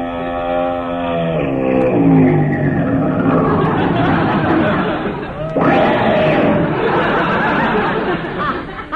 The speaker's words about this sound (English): Hey, that looks like Mrs. Bob Orpington's big long limousine coming this way.